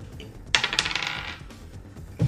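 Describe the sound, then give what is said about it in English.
A die is rolled on a table during a tabletop game and lands on a two. It makes a quick clatter of small hard objects tumbling and rattling, a short burst of bright clicks that settles within about a second, clear with no talking. “It's a two. That's gonna miss. What? This dice, I chose you. You betrayed me.”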